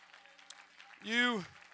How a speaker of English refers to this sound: Go ahead and clap your hands unto the Lord.